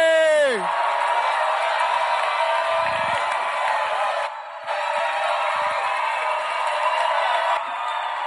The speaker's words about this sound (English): If you're excited as I am, make some Holy Ghost noise. Clap your hands